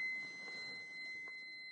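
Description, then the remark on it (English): A faint, steady high-pitched electronic alarm tone, not a fire alarm, sounds continuously in a house, with no one talking over it. “Some kind of alarm going off in my house.”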